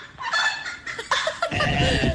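A turkey gobbles in a rapid, warbling burst of throaty calls, repeating over about two seconds, with a rumble of wind or handling noise in the background.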